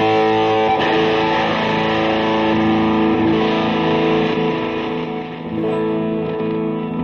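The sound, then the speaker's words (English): A heavily distorted electric guitar plays sustained, buzzing chords through a Behringer HM300 Heavy Metal Distortion Pedal in a live demo, thick and loud throughout with a brief dip in volume near the end, no voices. “Behringer HM300 Heavy Metal Distortion Pedal DEMO LIVE!”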